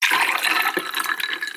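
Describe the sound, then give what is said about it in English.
Water sloshing around inside a large gallon water bottle, a fairly loud rushing gurgle that churns steadily for a moment with no voices. “It's a gallon water bottle, and I drink this every day.”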